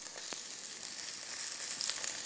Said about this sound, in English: Need a fair amount of oil in here to get that really crispy gorgeousness on the white bait. And we're gonna pop them into the oil, and you'll start to see them fizz away.